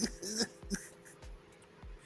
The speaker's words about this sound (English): Cough, cough, cough.